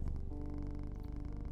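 A cat purrs steadily, a low continuous rumble with a quick rhythmic pulse, heard on its own without any talking.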